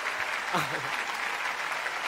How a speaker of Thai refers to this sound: ยืนขึ้นนะคะแล้วก็รับเสียงปรบมือให้กับพวกเราด้วยค่ะ